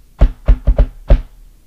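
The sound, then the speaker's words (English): Five firm, fairly loud knocks on a door by a person who has just opened and closed it, in an uneven rhythm: two spaced raps, a quick pair, then a final knock after a short pause. No one speaks. “I open the door, close it, and knock.”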